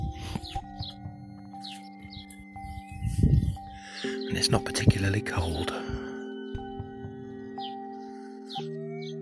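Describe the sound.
Birds chirp and tweet outdoors in the Midlands at 6:20 a.m. on an overcast, cloudy June morning, in scattered, fairly soft bursts throughout, while someone speaks briefly over a steady low background hum.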